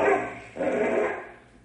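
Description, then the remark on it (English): A dog named Bim barks and snarls in two rough, sustained bursts, loud and agitated, with a brief break between them and no voices, while fighting a rattlesnake. “It's Bim. The rattler sees Bim. They're going to fight.”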